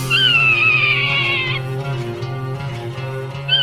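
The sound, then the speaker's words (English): A Swainson's hawk gives a long, high, slightly descending scream lasting over a second, followed by a pause, then the start of a second call, over a steady low hum. “The bird is the Swainson's hawk.”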